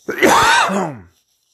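A single harsh throat-clearing cough, drawn out for about a second with a rasping, groan-like voiced tone that slides downward in pitch before stopping abruptly. No one speaks.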